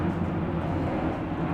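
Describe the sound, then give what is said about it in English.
A steady, low roar of an airplane passing overhead, a broad rumbling drone that holds an even loudness throughout with no voices over it. “And, here, if you want to wait for this plane to go by.”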